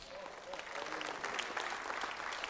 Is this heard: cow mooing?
no